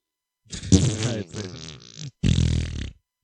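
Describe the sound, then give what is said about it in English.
Someone makes a wet, sputtering fart noise with their mouth, a long buzzing blurt followed by a shorter second one, fairly loud with no speech. “But it's like wet. You got to make it wet.”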